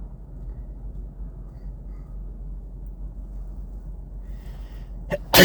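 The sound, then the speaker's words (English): A single sudden sneeze bursts out loudly at the very end, following several seconds of low, steady background rumble with no talking. “Bless you.”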